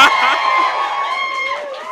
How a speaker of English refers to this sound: That cheer never fails to give me goosebumps. Every time I'm just like, oh God, everyone, love it.